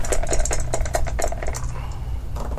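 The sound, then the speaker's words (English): Dice rattle and clatter across a hard surface during a tabletop game, rolled for fortunes, a quick run of sharp clicks for about a second and a half before settling, with a low steady hum underneath. “I have to roll fortunes, so to see if my followers have a surplus or a want.”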